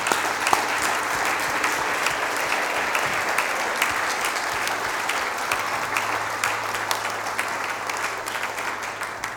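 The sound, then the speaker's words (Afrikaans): Sustained applause from an audience, a dense, steady wash of many hands clapping at an even loudness for the whole stretch, with no voices standing out. “Kom, ons geef hom 'n lekker hande klap.”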